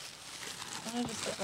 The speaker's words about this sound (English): So here, we'll do a little bit of tissue paper wrinkling. Oh, yeah. So here's our tissue.